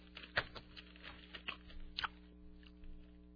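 Crunchy chewing of a mouthful of nuts, with sharp irregular crackles and mushy bites repeating over a few seconds, no talking.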